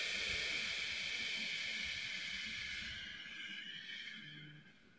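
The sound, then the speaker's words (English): A long, steady breath out during a guided belly-breathing exercise, with a soft breathy hiss, holding even for a few seconds before gradually tapering off and fading quietly near the end. No one speaks. “You talk about belly breath in the book, the middle all the way to the top of the chest, and let that balloon go out nice and easy.”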